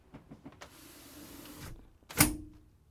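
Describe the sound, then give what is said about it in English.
A window is closed: a few soft clicks, then a steady whirring motor hum for about a second, ending in a sharp, loud thump as it shuts. No one speaks. “I gotta close the window because I hear a tractor.”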